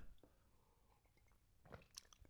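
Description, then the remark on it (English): Someone sips tea, a few short, wet mouth noises and a soft slurp clustered near the end, with quiet background hum and no talking. “I'm sipping away on tea there if you're listening.”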